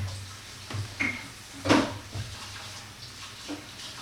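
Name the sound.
shower water running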